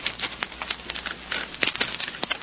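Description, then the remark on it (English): Typewriter keys clatter as a bill is typed out on an author's typewriter, a quick, irregular run of sharp clicks and taps, some strikes louder than others, with no voices over them. “So, sit down at the great author's typewriter and make it out.”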